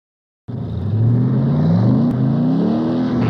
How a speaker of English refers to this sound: puts the pedal to the metal and fires up his ram-charged 1,200 horsepower Chevy pickup